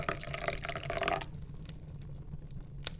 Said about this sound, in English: You reboil the kettle. And you pour up your favourite nightly drink in your favourite mug.